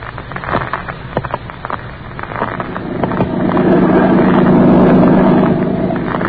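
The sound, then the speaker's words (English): A motorboat engine drones steadily as the hull skims across a lake toward the mainland, with choppy splashing and wind at first, then a louder, smoother roar as it picks up speed. “I sit here in the boat as it skims over the lake toward the mainland.”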